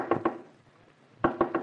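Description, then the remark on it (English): A woodpecker knocking on a tree in a front yard: two sharp, hollow wooden raps, a short pause, then three more in quick succession, loud and resonant with no voices present. “You got a new neighbor. A woodpecker.”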